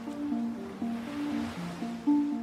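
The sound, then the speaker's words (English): Gentle Mediterranean sea waves lap and wash softly and continuously, fairly quiet, over a low bed of sustained humming tones with no voices. “Rolling waves of the Mediterranean lapping gently around them.”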